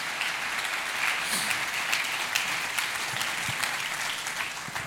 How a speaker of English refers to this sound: Let's clap our hands and thank God today for His word.